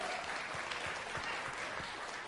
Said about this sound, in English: He's risen. Let's give him a round of applause this morning.